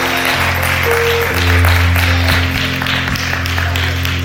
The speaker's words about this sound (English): Hallelujah. Glory to God. Can somebody give the Lord a hand clap of praise again?